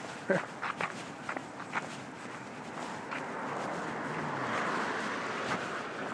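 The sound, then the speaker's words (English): A few footsteps crunch at first, then a car swells up from the background hiss and rumbles past before fading slightly. No one speaks. “That was a car.”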